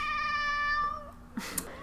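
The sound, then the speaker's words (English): A cat lets out a single long, drawn-out, loud meow, followed by some brief rustling and shuffling noises. “I am so sorry to everybody listening, because we cannot edit out the cat at this point.”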